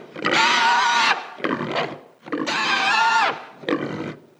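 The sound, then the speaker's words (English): A baby pig squeals loudly, used as the voices of the Gamorrean guards: two long shrill cries each followed by a shorter, choppier squeal, with no other sounds around them. “Who, surprise, surprise, their voices are a squealing baby pig.”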